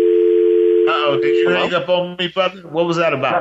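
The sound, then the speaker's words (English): A steady, continuous telephone dial tone hums alone for about a second after a dropped call, then a man starts talking over it before it cuts off. “Uh-oh, did you hang up on me, brother? What was that about?”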